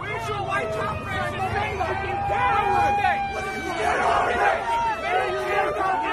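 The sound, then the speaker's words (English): A crowd of many voices, mostly white people in a park, shouts and yells racial slurs at a lone Black police officer, loud, with agitated raised cries rising above a constant dense babble throughout. “what's happening is that it's a park and there's a black officer who's pretty much by himself and he's being mobbed by a crowd of mostly white people yelling all types of racial slurs and whatnot at him.”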